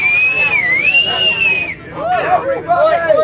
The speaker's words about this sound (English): You're the best whistler I know. Can you whistle and get everyone's attention so we can say goodbye?